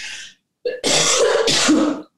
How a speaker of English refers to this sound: And here comes the cough.